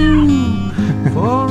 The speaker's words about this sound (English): Little cat samples. That's nice.